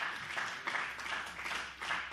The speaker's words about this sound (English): If you believe that, why don't you clap your hands?